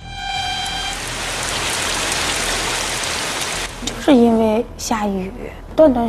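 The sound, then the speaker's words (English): A dense, steady hiss of heavy rain pours down near Xuanhua Station in China, slowing a train, for several seconds, with a faint sustained tone at the very start; toward the end a person begins speaking over the fading downpour. “Due to heavy rain, the train started to slow down after leaving Xuanhua Station.”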